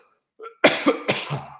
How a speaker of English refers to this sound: Hold on one second. I need to cough.